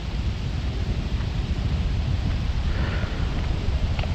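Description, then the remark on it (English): A steady morning breeze rushes through the leafy branches of topiary, a soft continuous rustle with a low, rumbling wind undertone and faint brief flickers of movement, no voices present. “How the planet sounds in the morning. The breezes and the branches of the topiary.”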